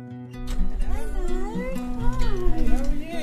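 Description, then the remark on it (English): A kitten at a home in Oxford, England, meows repeatedly and loudly, its rising and falling cries running together over a low steady background hum. “Oh my God, I didn't know there was going to be a cat.”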